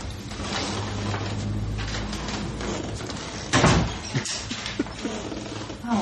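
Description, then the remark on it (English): A door creaks slowly open in a film scene as a police officer asks to come in, against steady background noise, followed by a heavier bump or thud as it swings, then a few lighter knocks. “Do you mind if we come in? Sure. Squeak, squeak.”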